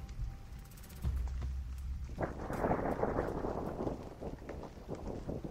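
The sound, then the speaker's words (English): Low thunder rumbles steadily, then a loud, crackling roll bursts in and sustains, with a wash of rain hissing underneath, heard from inside a bus during a thunderstorm with lightning. No one speaks. “The silence hid within me as the thunder filled the killer's bus, and the lightning made terrible things out of the shadows”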